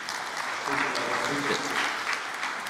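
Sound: audience clapping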